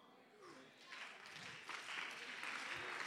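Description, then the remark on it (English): Scattered audience applause swells into a steady patter of many hands clapping, growing louder and denser over a few seconds, with faint voices mixed in underneath. “I thought I'd get a few more hand claps.”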